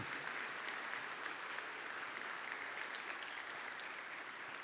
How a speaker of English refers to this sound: And yeah, that is worth an applause. You bet.